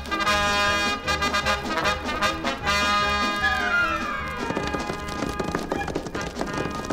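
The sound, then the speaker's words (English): Horse hooves gallop in a steady, rapid rhythm beneath loud orchestral music, the clattering beats running the whole way through as Davy Crockett and a companion ride in the saddle toward a stable to get fresh horses. “Whoa. Whoa, girl. Got two fresh horses, mister?”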